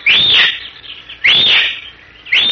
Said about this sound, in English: Several minutes later, the same horseman, having traveled a secret trail beneath a rocky shelf of the mountain, dismounts in a tiny glade surrounded by boulders, stunted trees, and giant cactus. He whistles three times, shrilly.